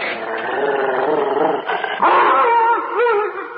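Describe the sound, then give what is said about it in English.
A frightened dog howls and whines in protest at being taken inside through a door, a sustained wavering cry with rising and falling pitch lasting several seconds, loud, with no talking over it. “What the devil's the matter with you? Oh, come now, boy. Are you a dog or a mouse?”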